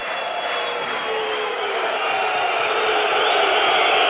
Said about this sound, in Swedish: Och det här är ett fascinerande moment. För nu kommer det övergå till lite buande. Och det här är när domarna åker in på isen.